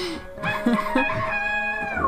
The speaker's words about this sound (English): that was a rooster, actually. Yeah. Well, you could have called that a cock. That was a cock noise.